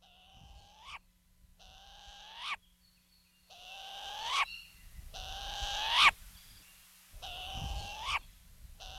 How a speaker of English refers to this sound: Kilauea, or Hawaiian short-eared owl, is our only native owl and is important in Hawaiian culture as an aumakua.